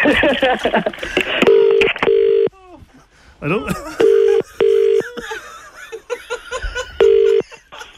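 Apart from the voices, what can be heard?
telephone number being dialed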